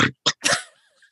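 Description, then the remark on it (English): A person imitates the grunting noises an old dog makes in the middle of the night: three short, gruff vocal bursts, the last one longer and trailing off into a faint, wavering whine. “You know, you thought it would, you know, the kinds of noises this dog makes in the middle of the night, you'd have thought I was the one making those noises.”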